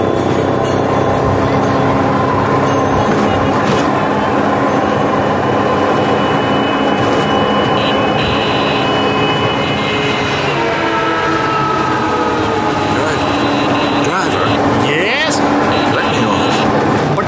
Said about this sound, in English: Well, jet lag or not, I think I'll try one of those three-wheeled scooter taxis. It's nothing like a little careening through traffic to wake me up.